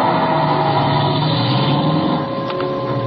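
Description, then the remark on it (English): A car engine drones loudly and steadily for a few seconds as the car drives away, a dense rumbling hum with no voices, without noticeably fading. “But when I peeked over the top of the stairs, he was in his car and going.”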